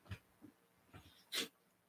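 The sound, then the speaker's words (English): A dog makes a few short, soft snuffling grunts, then lets out one louder, breathy snort, with quiet pauses between each burst and no one talking. “Come on, dog, stop.”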